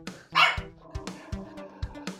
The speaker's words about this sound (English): My dog is barking.